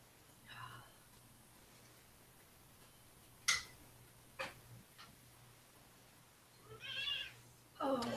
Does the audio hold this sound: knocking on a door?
no